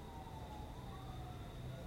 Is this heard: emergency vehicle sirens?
yes